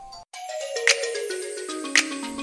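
A phone ringtone for an incoming call plays a loud, melodic, descending electronic tune, with two brighter chime accents about a second apart and no talking over it.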